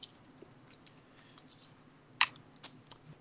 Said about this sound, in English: Okay, so I'm taking those three cards and adding the all threes, and I will start shuffling the cards.